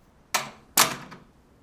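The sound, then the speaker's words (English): A door is shut with two sharp, clunky knocks half a second apart, then a faint rattling click as it settles. No one speaks. “Should I close the door first? Of course you should.”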